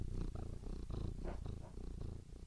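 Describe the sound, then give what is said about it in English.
A cat purrs steadily right against the microphone, a deep, rumbling, continuous vibration pulsing in a regular breathing rhythm, close and full with no talking. “Anyway, my favorite thing to do when I'm recording a podcast is to put my microphone up to her head so you can hear her sounds.”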